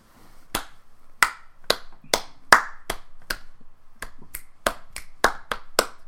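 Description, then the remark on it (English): A person slaps their hands together in a loose attempt at patty cake, not really keeping the patty-cake rhythm: about fifteen sharp, bright claps over six seconds in an uneven rhythm, with a short pause in the middle and no talking. “I was also just basically slapping my hands and not really doing the patty cake rhythm.”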